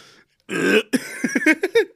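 cough

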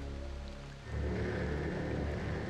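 heavy rain downpour

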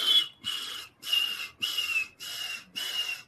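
referee whistle blowing

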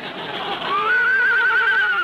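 horse neighing

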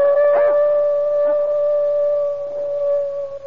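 animal howling

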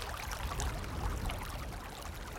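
running water

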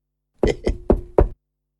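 knocking on a door

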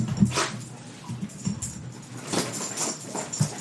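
dog barking and whimpering

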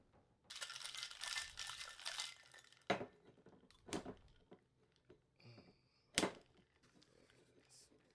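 cocktail being shaken

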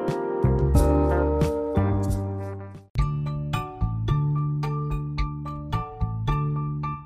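doorbell ringing

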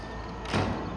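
door being shut

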